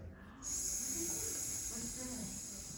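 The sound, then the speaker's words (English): A person imitates a snake with a loud, steady hiss that starts abruptly after a short pause and holds for over two seconds, with faint voiced murmuring beneath it. “snake! A snake!”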